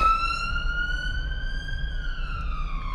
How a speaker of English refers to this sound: hang on, wait for this ambulance.